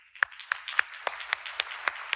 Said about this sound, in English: And I just want to take the time right now to thank our small group community leaders. Can we just give a clap?